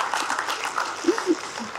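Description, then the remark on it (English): An audience at a church service claps again for a group who just performed, a dense, even patter of many hands at moderate loudness lasting about two seconds, with a couple of brief low vocal sounds mixed in. “So let's give another clap.”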